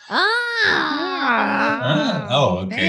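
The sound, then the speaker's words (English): Voices wail and yowl in long, wavering, sliding tones like howling cats, loud, overlapping and continuing for the whole stretch with no clear words. “They're kind of howling like cats at this point.”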